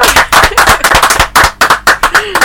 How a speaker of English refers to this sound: And I think that's an achievement for which you deserve, a good round of applause. The guys in the studio join me in giving him a good round of applause.